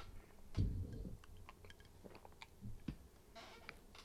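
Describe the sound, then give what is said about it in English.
A quiet sip from a drink: a soft slurp followed by faint swallowing and small wet mouth clicks, with no talking. “I paused for a sip there, expecting you to reply.”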